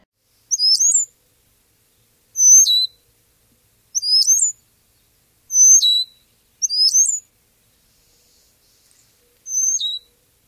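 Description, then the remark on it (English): Six high, thin whistled calls of a brown-headed cowbird repeat at fairly even intervals, each a brief sharp upward-and-downward note, clear, with silence between them. “Their calls are high, thin whistles.”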